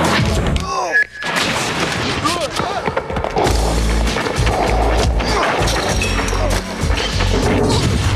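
A skateboard rolls loudly across hard pavement with a continuous gritty rumble, broken by sharp clattering impacts and crashes as the board slams down, with faint background noise throughout, in a spot for Three Extremes by 989 Studios, featuring skateboards, bikes and blades.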